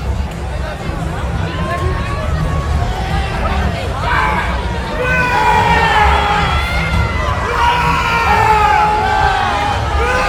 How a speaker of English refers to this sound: Hold on. I got to hear this without the music. I got to hear the scream again. That was too good.